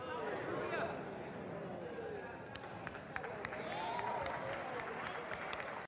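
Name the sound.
audience applauding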